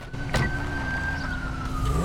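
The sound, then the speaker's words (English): A loud emergency vehicle siren holds a high, steady wail that slowly sags in pitch, with a low engine rumble and road noise underneath. “Q siren, check your vehicle, please.”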